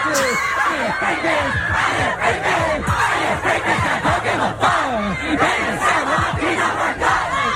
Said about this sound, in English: Look at the reaction of all these women's faces when he rips his shirt off. Like... All right, we're on his Instagram. You can hear the scream. He's on top of the car playing his rap.